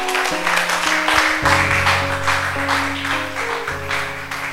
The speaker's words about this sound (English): Oh, are you clapping for Jesus?